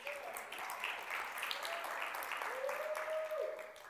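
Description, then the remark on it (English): An audience gives a morning clap offering for a man, applauding steadily for several seconds, a dense, even wash of many hands clapping at once, with a faint tonal hum drifting underneath and no one speaking. “Can we give him a clap offering this morning?”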